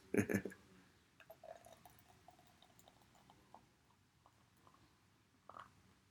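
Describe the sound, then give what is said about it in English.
A PB and Jelly beer glugs and splashes into a glass, starting with a loud gush, then settling into a soft fizzing trickle with scattered bubbly pops and one last splash near the end. “Let's see if I can get this pour right today.”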